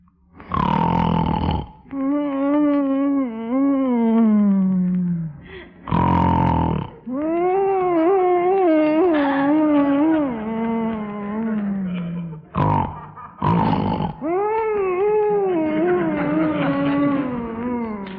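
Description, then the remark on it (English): Three harsh, rasping grunts or snorts alternate with long, wavering, high-pitched whines, a loud and steady cycle of a husband's sleep noises in bed at night in The Bickersons radio show, with no talking. “Whining and giggling and grunting and snorting is driving me crazy.”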